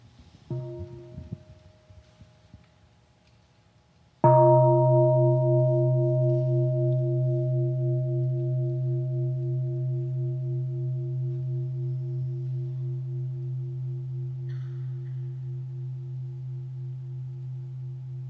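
A deep, resonant meditation bell is struck once after a few seconds of soft sound, its rich humming tones sustaining and slowly fading over a long, gentle decay.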